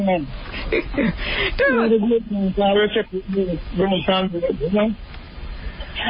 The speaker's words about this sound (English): Let's see if we can, because we're getting a bit of distortion on the line. Say something for us, won't you? Bless him. Okay, there's a bit of fallout.